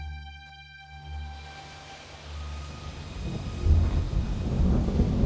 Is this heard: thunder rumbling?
yes